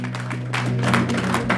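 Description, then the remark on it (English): A crowd clapping their hands together in a dense, fairly steady rhythm, the many claps blurring into a continuous patter over a low, constant hum. “Come on, clap your hands. Oh, clap your hands.”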